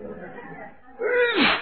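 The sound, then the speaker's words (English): A single loud sneeze: a drawn-out, rising 'ah' breath that ends in a sharp, hissing burst, preceded by a moment of low murmured voicing. “Now, how do you explain that second sneeze?”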